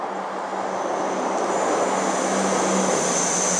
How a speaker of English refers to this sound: There comes the train again to punctuate my philosophy. Thank you for that, Northern Rail.